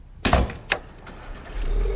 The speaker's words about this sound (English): Wow, nice car. Oh my god, that is a Bentley Continental Flying Spur 6.0! Jun Ji Hyun drives this.